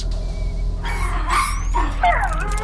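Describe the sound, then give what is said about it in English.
A small alien space puppy, hatched from an egg, gives a few high-pitched yips and whimpering, sliding cries, rising and falling in pitch over a low, steady background hum, inside a spacecraft in deep space. “Can anyone speak Dayglo alien egg puppy-ish? I don't know what he wants.”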